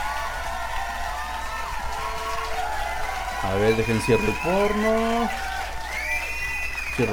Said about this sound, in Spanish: Un aplauso, como no.